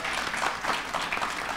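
A crowd at the Cup North show claps steadily for the sponsor Cimbali, a dense wash of overlapping handclaps holding at an even, fairly loud level throughout, with no voices breaking through.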